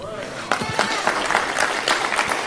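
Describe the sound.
An audience claps steadily after Kamala Harris says Joe Biden is very serious about being the most pro-labor president, a dense patter of many hands at moderate loudness that keeps up for a couple of seconds, with faint crowd voices mixed underneath.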